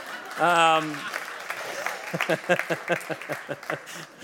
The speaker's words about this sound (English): We have, thank you for one clap there